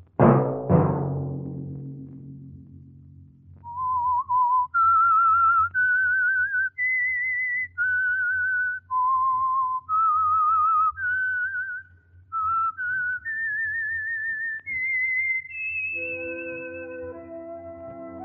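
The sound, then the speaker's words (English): Two loud low chords ring out and fade, then a lone whistler carries a slow, clear melody of held, gliding notes over a soft low drone before orchestral music swells back in; it is the theme of the Signal Oil program The Whistler. “Let that whistle be your signal each Sunday for the Signal Oil program, The Whistler.”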